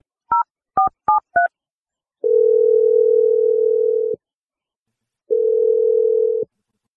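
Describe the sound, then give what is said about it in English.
Four quick touch-tone keypad beeps as the radio morning show Brooke and Jeffrey in the morning dials a listener's number, then the phone line ringing: two long, steady ring tones separated by a pause, clear with no voices. “Let's just dial her phone number and see what she has to say.”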